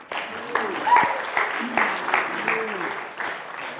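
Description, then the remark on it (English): A church crowd breaks into steady applause for three people called up to help the preacher, a dense wash of many hands clapping at fairly even loudness for a few seconds, with faint voices and a brief whoop mixed in. “Quick round of applause, please.”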